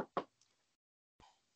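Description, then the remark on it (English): Knocking on wood, loud: two quick raps in succession, then a brief silence before one more knock rings out, with no voices present. “Now, if he can stay healthy and not get injured, knock on wood again.”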